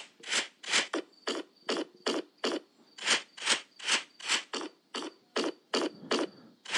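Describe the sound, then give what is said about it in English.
A quick, steady string of short, raspy fart noises played through a phone's small tinny speaker, around seventeen evenly spaced bursts, fairly loud, with no one talking. “Those are farts, and he's trying to get them away.”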